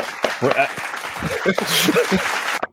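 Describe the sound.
A short round of applause for someone who filled in, a steady wash of clapping with voices talking and cheering over it, lasting a couple of seconds before cutting off abruptly rather than fading.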